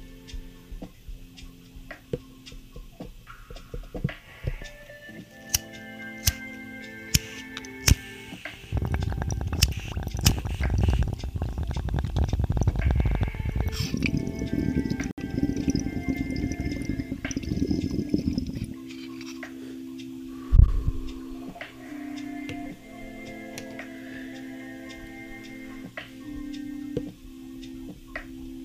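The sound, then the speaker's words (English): A few sharp clicks, then roughly ten seconds of loud, dense bubbling water gurgling from a bong hit with a heavy reverb wash, followed by a lingering hum and a thump. No one talks. “But we'll do the bong hit with the reverb turned up again.”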